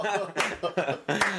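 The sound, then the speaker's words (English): Hand claps, three sharp smacks at a steady, unhurried pace, land over continuous talking voices that stay prominent throughout. “Hey, you shouldn't be clapping”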